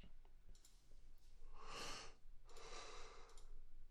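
Someone yawns: a long, breathy inhale followed by a drawn-out airy exhale, over a faint low hum with no talking.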